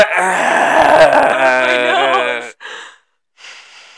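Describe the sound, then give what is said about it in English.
A person exhales loudly and heavily right into a microphone, a long groaning sigh that trails off, followed by two shorter, breathy puffs of air. “Are you just breathing into my light right now?”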